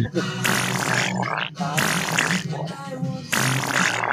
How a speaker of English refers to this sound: You are on the fart joke tonight, dude. He's really obsessed with that sound.